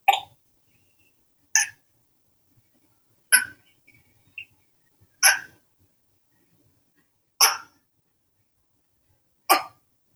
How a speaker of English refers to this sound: So the summary of the story is geckos are awesome. They make vocalizations. And here, let me play just a little clip of a gecko chirping.